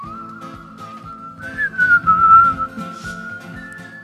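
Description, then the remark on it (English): A steady, sustained whistled melody floats over a strummed, folky acoustic backing, the tune gliding slightly in pitch and swelling louder midway before settling again. “This is like a British man trying to be American folky.”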